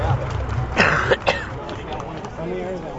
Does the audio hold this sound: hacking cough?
yes